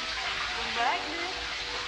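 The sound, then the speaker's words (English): A steady, continuous hiss of shower water running as a woman gets into the shower, dense and even throughout, with a faint murmur of voices or tones briefly surfacing beneath the spray. “Right, so she just got into the shower.”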